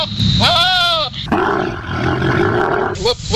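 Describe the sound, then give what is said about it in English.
A goat gives a short, quavering bleat, then a camel lets out a loud, rough, gurgling roar that rumbles on for a couple of seconds, raw, with no talking. “You just heard what could possibly happen if a lonely camel with its doula out encounters a goat.”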